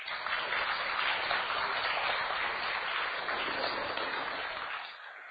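An audience claps steadily for about five seconds, a dense, even wash of many hands that tapers off slightly at the end. No one speaks over it.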